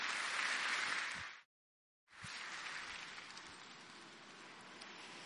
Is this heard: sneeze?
no